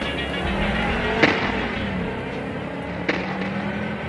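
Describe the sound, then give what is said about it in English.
A stolen car's engine roars steadily as it speeds away toward the mountains, with broad rumbling road noise and two sharp knocks partway through. No voices. “watches as the stolen car speeds away, disappearing behind a cloud of dust.”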